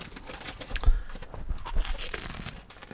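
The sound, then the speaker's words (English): Crinkling of a bag of baby weaning-food snack crisps, a steady run of crackly, papery rustles with a few sharper crunchy bursts, moderately loud throughout with no voices. “I feel like I should pour milk into the bag.”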